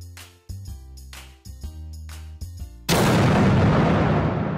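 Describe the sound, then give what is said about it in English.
A few seconds of steady synth-like musical chords are cut off by a sudden, loud gunshot blast that bursts in and roars on with a long, noisy rumble to the end. “Why is there a gunshot?”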